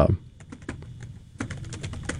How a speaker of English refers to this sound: We'll look it up, but I'm pretty sure that the same year they won baseball, and you can hear me typing.